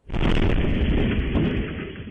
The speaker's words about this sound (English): An overnight explosion at a townhouse complex in Kitchener, Ontario, sent four people to hospital, two of them children.